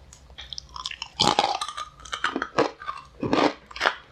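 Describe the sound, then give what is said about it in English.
Loud crunching of a very crunchy snack being chewed, with several sharp bursts in an irregular rhythm and no talking. “Well, these are super crunchy. These are awesome. All right, but nobody wants to hear me eat.”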